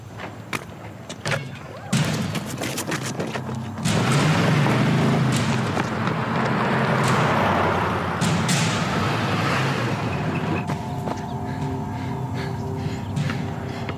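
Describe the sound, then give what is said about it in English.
A pickup truck with a Confederate flag, a Don't Tread on Me license plate and an Ed Gillespie bumper sticker drives past in Virginia. Its engine rumbles steadily with a low roar, gritty road noise and a few thuds early on; nobody speaks. “So a Latino kid stops, and then he sees an Asian kid, and then both of them start running because here comes that truck again.”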